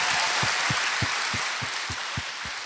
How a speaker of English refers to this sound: To our graduates, congratulations. Let's give our graduates a big round of applause, huh?